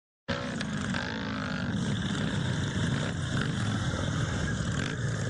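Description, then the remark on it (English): Loud motorcycle engines of hundreds of bikers from Billion County, Illinois, rumble together in a steady, continuous roar as a procession rolls past, held for motorcyclists who died in a crash, with no voices. “bikers lead procession for Illinois motorcyclists who died in a crash.”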